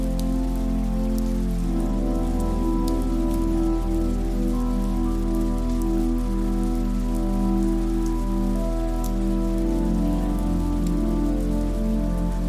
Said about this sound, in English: Summer thunderstorm. Summer thunderstorm.